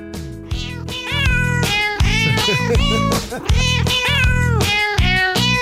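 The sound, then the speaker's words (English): Cat meows arranged into a song, with rhythmic, pitched meows repeating over a steady musical backing, loud throughout. “This is one of my favorite ones where they break it down. Oh, yeah. Yeah. Hold on. Here, they're singing now.”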